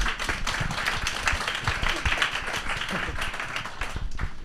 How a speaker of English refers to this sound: Just give our panellists a huge round of applause and welcome.